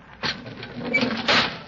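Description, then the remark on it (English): A steady hiss of air being pumped into a chamber to put it under pressure, with two louder surges, one near the start and one near the end, over a faint low mechanical hum. “What's that hissing sound? Well, that means that air is being pumped into this chamber.”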